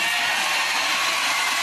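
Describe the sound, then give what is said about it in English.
A large crowd at a town hall rally in Myrtle Beach, South Carolina cheers in a dense, continuous roar that stays loud and steady the whole time, with no single voice standing out from the wash of noise. “But that crowd was pretty fired up, man. They were into it.”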